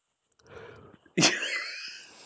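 A big, breathy yawn, close up: a drawn-in breath builds, then a sudden loud open-mouthed release trails off over about a second, with no talking.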